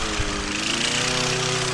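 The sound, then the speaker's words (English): A lawnmower engine roars loudly, a steady droning buzz that holds for the whole moment with its pitch sliding slightly as it passes. No voices. “That lawnmower could have taken someone's head off.”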